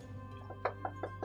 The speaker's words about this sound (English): I knock on the door. That's a nice ADR there.